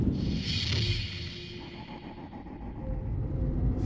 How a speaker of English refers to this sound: I visualize the flickering lights of a gas station. The moment when it happened. The car trundling up.